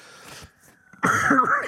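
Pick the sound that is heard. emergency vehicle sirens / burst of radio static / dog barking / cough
cough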